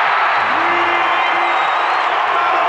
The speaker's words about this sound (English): Crowd loving it. Red shirts, orange shirts, gold shirts, all standing as the city uniforms glowing with a 23-20 lead.